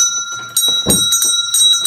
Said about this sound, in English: Oh, there's the bell. I think there's a customer coming.